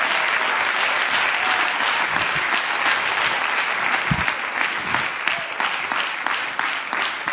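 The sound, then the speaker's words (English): An audience claps hands to the Lord in praise, sustained, dense applause, a steady wash of many overlapping claps at fairly strong volume throughout, with no clear speech over it. “Come on, clap your hands to the Lord and give him praise right now.”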